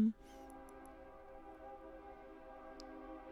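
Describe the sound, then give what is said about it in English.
A train sound effect: a steady, droning horn-like chord holds for several seconds at moderate volume, with a few faint clicks near the start and one near the end. “Time for a train drink.”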